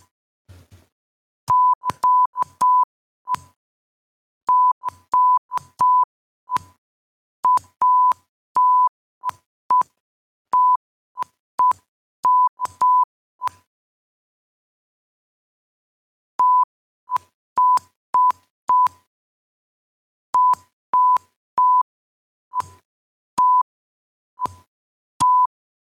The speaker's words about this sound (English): There you go, poopy butt in Morse code.